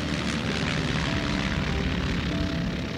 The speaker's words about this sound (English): And then, just like that, the plane is soaring into the air. The boy stands dumbstruck as the craft's 32-foot wings rise high above his head.